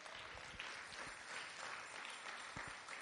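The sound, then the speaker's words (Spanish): A church audience claps hands as an offering of applause to the Lord, a dense, sustained burst that is steady and moderately loud for a few seconds with no voices on top. “¿No le quiere dar una ofrenda de palmas al Señor?”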